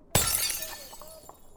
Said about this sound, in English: However, in his frenzy, he forgets to be vigilant and accidentally knocks over a presumably priceless pitcher.